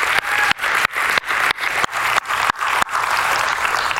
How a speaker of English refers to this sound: Can you just give this team a great big round of applause for leading us this morning?